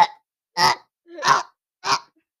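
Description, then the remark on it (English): Someone imitates a fart with their mouth: four short, breathy, sputtering bursts spaced evenly apart, fairly loud, with silence between them and no talking. “That was a fake fart.”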